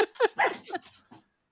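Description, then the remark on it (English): A few short barks and whiny whimpers from dogs wanting to be let out, in quick succession, high-pitched and yelping, fading out after about a second. “Yeah, the dogs are barking.”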